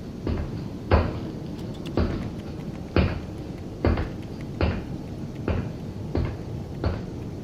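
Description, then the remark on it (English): A door being opened, heard as a series of about eight evenly spaced, moderately loud thuds and rattles, roughly one per second, with no voices. “Here, I'll open it.”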